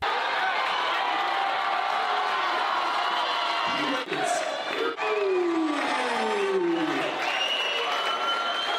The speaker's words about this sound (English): He draws some support. He harnesses and channels a quite extraordinary and raucous Cliftonville support. Have a listen.